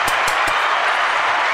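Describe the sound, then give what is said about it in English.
A burst of canned applause, dense and steady, with a few sharp individual claps at the start before settling into a continuous wash of clapping from a crowd. “Give me the applause.”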